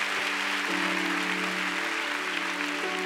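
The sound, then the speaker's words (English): A large group claps continuously for God, a dense, steady wash of applause without pauses, while a low sustained musical drone hums beneath it. “Come on, go ahead and give God a big clap.”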